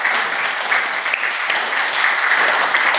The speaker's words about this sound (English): But a huge round of applause for the team there.